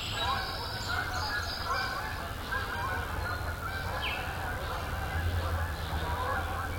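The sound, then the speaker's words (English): A large raft of geese honks continuously as it takes off below a small wooden lookout, dozens of overlapping calls forming a loud, dense clamor that carries steadily for several seconds against a low rumble of wind. “There's a whole raft of geese down there. I was watching them from this lookout, this little wooden lookout. And they just took off.”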